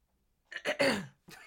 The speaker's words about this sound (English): Well, if I need to clear my throat, how can you keep cutting that out? Like, there has to be a better way to do this.